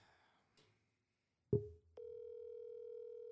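A click, then a steady electronic telephone tone starts and holds, a call ringing through a phone's speaker. Fairly clear, with no voices.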